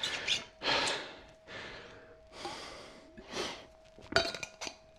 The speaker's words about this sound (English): Have a quick drink.